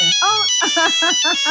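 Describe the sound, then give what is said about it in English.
A phone rings with a loud, warbling melodic ringtone, its bright tones rising and falling in quick repeated bursts over a steady high whine. “Oh, someone's calling. Can you hear that on the phone?”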